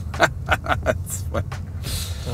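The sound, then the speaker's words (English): Steady low rumble of a Mazda car's interior while driving, with muffled road and engine drone underneath people talking. “You don't have to park your car for this?”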